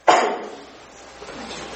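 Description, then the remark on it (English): A single sudden, loud sneeze bursts out at the start and quickly trails off, leaving a faint hiss of background noise for the rest of the moment. “Bless you.”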